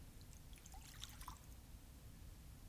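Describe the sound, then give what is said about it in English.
Liquid pours in briefly, a soft burst of trickling and bubbly splashes near the middle over a steady low background hum. The sound is faint, with no one talking. “Totally poured in.”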